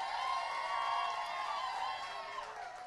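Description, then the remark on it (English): A live church audience at a Slate Church Team Night cheers and whoops in a steady, dense roar of many voices, holding fairly loud for about three seconds before easing slightly at the end. “That's who you're hearing right now.”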